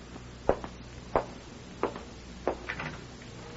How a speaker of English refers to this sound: What are you doing? Locking the door.